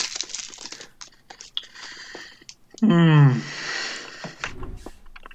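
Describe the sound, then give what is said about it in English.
A chocolate in a blue wrapper being unwrapped: a run of crisp, uneven crinkles and rustles, interrupted midway by a short, loud voiced sound, followed by more soft crinkling. “We've got a chocolate left to unwrap. Oh, lovely. Can you hear it?”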